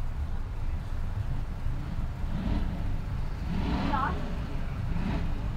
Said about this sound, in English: I don't think you can hear it because that other guy's revving his engine